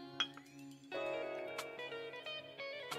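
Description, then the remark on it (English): A few bright glass clinks ring out in a toast with bourbon and Glenmo 10 scotch, one early and a couple more later, over steady sustained musical tones playing quietly in the background. “Cheers, here we go again.”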